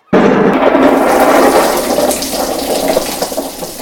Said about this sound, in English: How about a thunderstorm? I do enjoy the rain.